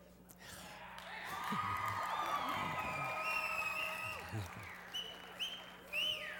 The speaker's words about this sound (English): Thank you, guys. This is what happens when you tell somebody you're going to pay them to cheer for you when you get up on the stage.